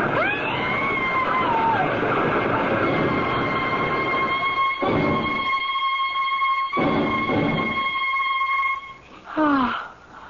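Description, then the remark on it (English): A train pulls away from a station: a loud, sustained high-pitched whistle rings over a steady rumbling roar, breaking off briefly twice, then ending with a short falling squeal. “I can't stop the train. It's moving, lady.”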